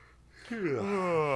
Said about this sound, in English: let's start a yawn chain. Talk about yawning. I'm doing it right now.